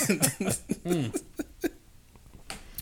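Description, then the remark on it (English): A short, croaky burp rises out of a cluster of throaty vocal noises near the start, followed by a few faint clicks and breaths against an otherwise quiet background. “It's the... burp.”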